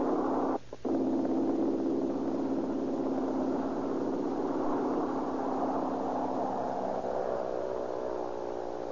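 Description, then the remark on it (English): A small red airplane's engine drones steadily and loudly over Southern California, its pitch slowly climbing as it revs up for takeoff, with a brief stutter near the start and no voices. “Little mechanical red bird skims across the gloom of the air drone, sees the top of the grass, and falls toward the heavens.”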